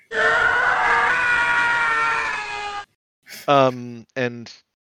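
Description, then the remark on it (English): A person imitates the Howie scream, a classic stock movie sound effect: one loud, sustained, strained howl lasting nearly three seconds, followed by a pause and a few short voiced bursts of talk. “Yeah, and I always recognized the Howie scream, and I felt like nobody else, like everybody knows the Wilhelm scream.”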